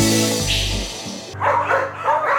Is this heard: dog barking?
yes